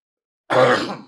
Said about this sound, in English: That's a professional right there. You coughed away from the mic.